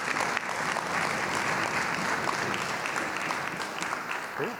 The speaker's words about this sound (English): So we have heard from a lot of folks about a lot of really interesting things. How about a big round of applause for everybody who shared? Nicely done.